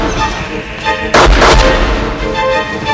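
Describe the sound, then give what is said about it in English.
A loud, sharp burst of gunfire erupts about a second in, two quick heavy blasts booming over a dense, rumbling backdrop, then fading back into steady low noise. “Why'd you shoot me?”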